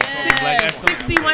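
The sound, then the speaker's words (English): Applause comes as a handful of sharp, evenly spaced claps, about four in a steady beat, over a murmur of voices, given for a woman who owns a gym. “We got to give her a round of applause.”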